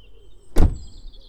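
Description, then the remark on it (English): A car door shuts with a single solid thump as someone steps out of the car, fairly loud and decaying quickly. A faint steady background hum fills the rest of the moment, with no talking. “Well, you can tell that I've stepped out of the car.”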